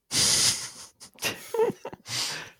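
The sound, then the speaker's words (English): A person imitates a steam train with their voice: a long breathy hiss, short puffs, a brief rising-and-falling tonal whoop, then another sustained hiss. No words are spoken. “I'm just a train.”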